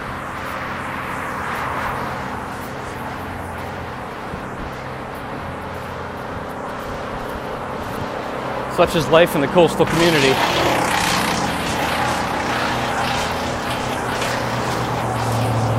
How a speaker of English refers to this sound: And more than likely, you won't hear any of it because all you hear is as the branch gets chewed up into the machine.